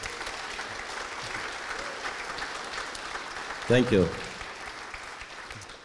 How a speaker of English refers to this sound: Yeah, that deserves a clap.